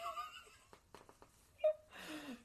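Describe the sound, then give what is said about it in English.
Strained, wheezing breaths with whistling, tonal gasps and a few catches, ending in a rough, noisy exhale; fairly quiet, with no talking. “Looks like you're having a little trouble breathing there.”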